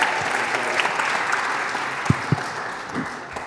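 An audience at a church claps together in a steady, dense wash of birthday applause that holds at an even level for several seconds, with a few sharper claps standing out near the end and no voices over it.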